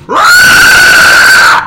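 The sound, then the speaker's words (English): A person voices a loud, sustained screech imitating a creature, a harsh, steady shriek rising quickly and holding for over a second before cutting off, alone with no other talk. “Screeching down at you directly face to face.”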